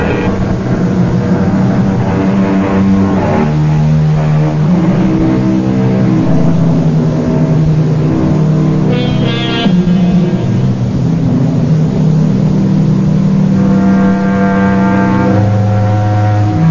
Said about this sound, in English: It is almost midnight. The highway is deserted. Off in the distance, we hear the keening of a finely tuned sports car. It grows louder as the car approaches.